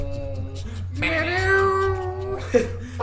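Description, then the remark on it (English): A person imitates a cat with one drawn-out meow that holds a steady whining pitch for about a second before trailing off, over a low background hum. “Vietnam, like, meow.”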